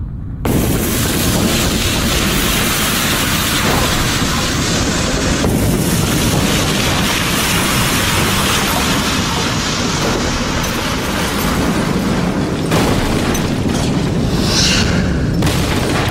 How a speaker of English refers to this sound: Willetz's simulation was used to model Krakatoa's 535 AD Big Bang.